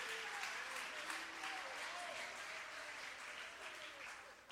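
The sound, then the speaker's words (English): A church audience claps steadily for several seconds to give the Lord praise during a sermon, a dense wash of many hands with faint vocal exclamations rising through it. “Oh, clap your hands and give the Lord praise.”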